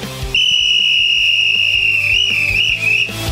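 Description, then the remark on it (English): A shrill, steady whistle blast held for about three seconds, loud, with a slight wavering pitch near the end before it cuts off, blown by a Dallas Cowboys football fan. “The whistle you're about to hear is from a Dallas Cowboys fan excited to talk about his team. Blow the whistle.”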